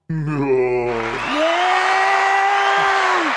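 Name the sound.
crowd cheering and applauding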